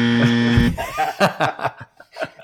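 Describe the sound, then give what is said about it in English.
A harsh, steady buzzer blares for about half a second with a rich, droning tone, then cuts off as voices break into talk and chuckles. “I'm gonna give that the buzzer.”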